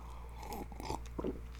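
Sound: sipping coffee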